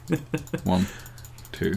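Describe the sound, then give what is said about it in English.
Three quick, evenly spaced computer clicks, made while clicking repeatedly to randomly roll for an item in a game without looking at the screen, followed by brief vocal sounds from a person and then another short voiced burst. “randomly rolling by clicking it loads of times without looking at the screen.”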